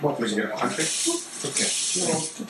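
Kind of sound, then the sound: household object, water running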